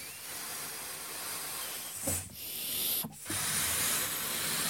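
Someone blows up a 6-inch balloon until it is huge, covering one eye with a hand, with long, steady, breathy exhalations broken by two brief pauses to draw breath. The airy hiss is fairly loud and continuous, with no talking.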